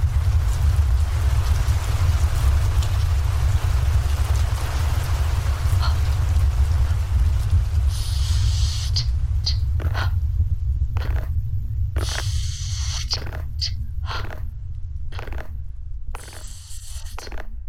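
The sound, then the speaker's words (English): A storm sound effect: steady rain hisses over a deep, continuous low rumble of thunder, loud, with the rain texture breaking up into choppy bursts toward the end. “Thunder and lightning.”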